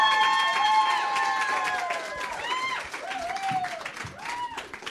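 A studio audience bursts into dense, steady applause with whoops and cheers rising over the clapping, loud at first, then easing slightly while staying lively throughout, as a guest is brought out at a New Country 105.1 radio event.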